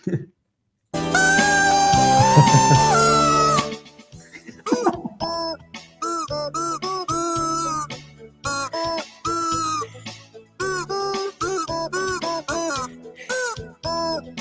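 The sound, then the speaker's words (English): A loud, harsh honking squawk from a chicken in a video holds for about three seconds with a wavering pitch, followed by quieter choppy voices talking. “The goose, the chicken. The honking chicken.”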